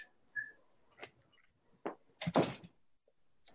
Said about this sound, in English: And I'm going to close the door here lest we be disturbed.